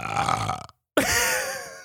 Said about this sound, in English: See, I burped.